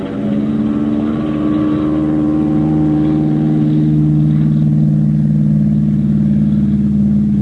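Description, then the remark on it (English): An aircraft engine roars at full power for takeoff, the plane getting off the ground after about 200 yards: a loud, steady drone with strong low humming tones that shift slightly in pitch as it revs, with no voices. “I gave her all she could take and got off the spot after I'd gone about 200 yards.”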